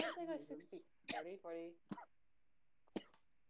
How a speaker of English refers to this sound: stop coughing your lungs out.